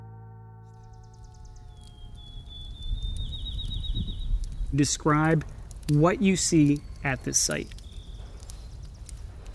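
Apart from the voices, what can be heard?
birds chirping outdoors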